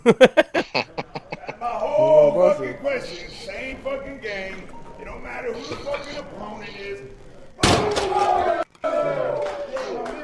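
An Alabama strength coach slams a sledgehammer on the floor in a rapid series of heavy slams, followed by loud angry shouting and crowd-like yelling, then another sharp, harsh crash cuts in near the end.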